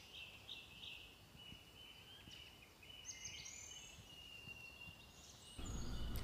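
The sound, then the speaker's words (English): Soft birdsong of thin, high whistles and short chirps drifts over a quiet, hissy outdoor background, with a low rumble swelling near the end. No one speaks. “But the stillness is broken by the gentle sound of birdsong, full of promise, but also a warning of the battles ahead.”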